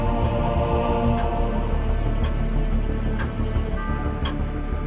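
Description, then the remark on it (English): An old clock under sheets ticks steadily after vibration set it going, about once per second, five crisp ticks sitting over a dense, constant layer of background noise that nearly swamps them. “It's just an old clock, Mark. Vibration will have made it start ticking.”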